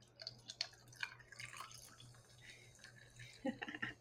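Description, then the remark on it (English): A drink is poured into a glass over ice, with bright splashing and scattered clinks and crackles over a few seconds, no talking. “And then I love the pour.”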